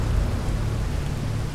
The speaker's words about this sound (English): Thunder rolled in the valley. Rain came lashing down.